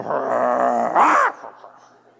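A dog growls steadily, the rumble swelling into a sharper, louder snarl about a second in, then trailing off into quiet.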